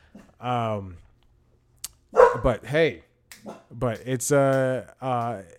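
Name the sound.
dog barking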